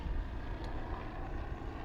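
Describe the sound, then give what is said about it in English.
A steady, heavy low rumble of helicopters passing overhead, droning continuously with a dense engine roar and no voices, moderately loud throughout the short stretch. “Let's move up a little closer to the mic just in case, because these helicopters.”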